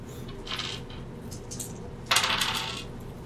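Dice are rolled for a notice check in a tabletop role-playing game, coming up snake eyes: they rattle softly, then drop with a sharp clatter that tumbles and fades within a second. The bright, clicky sounds stand alone with no voices.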